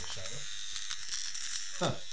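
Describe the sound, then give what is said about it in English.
A small electric ear and nose hair trimmer from Manscaped, used to remove hair from ears and nose, buzzes steadily with a bright, high whine, while a voice murmurs faintly underneath and a brief louder vocal sound rises near the end. “And this, you can use this to get the hair out of your ears, your nose.”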